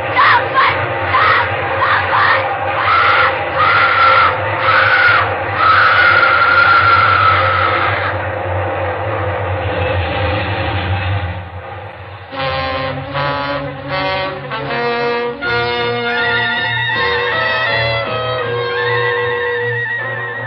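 A long, loud train roars past for about twenty seconds in the Suspense radio play Commuter's Ticket, its heavy rumble and rhythmic clatter filling everything, with blasts of a horn or whistle sounding over the din. No one speaks.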